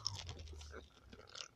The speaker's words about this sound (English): But I'm eating Tic Tacs right now. Not sponsored.